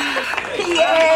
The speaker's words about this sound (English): Oh, there's a bell!